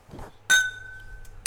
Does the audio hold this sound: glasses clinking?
yes